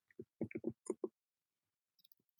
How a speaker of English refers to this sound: I'm over here typing. They may hear me typing.